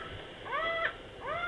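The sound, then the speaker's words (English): A bird gives loud, laughing calls: two drawn-out, nasal, wavering cries separated by a short pause, with no voices. “by faster ha ha ha ha ha ha calls, suggestive of maniacal laughter.”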